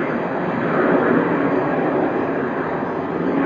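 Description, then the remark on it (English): A steady, broad roar of a jet aircraft overhead, loud and sustained with no breaks, filling the whole clip without any voices. “Peacefully coexisting with the sounds of the jet, voice, traffic”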